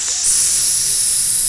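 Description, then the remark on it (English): A steady, loud hiss of bright, airy noise that kicks in just after the start and holds evenly throughout, like steam or spray escaping, with no voices. “And then we get the hissing.”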